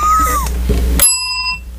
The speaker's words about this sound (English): I had to hit the bell and then stop it so there wouldn't be, like... The reverberation.